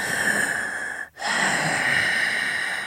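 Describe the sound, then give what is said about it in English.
A voice imitates heavy breathing: two long, loud, raspy breaths, separated by a brief pause, with no talking. “And it's like heavy breathing and it's consistent.”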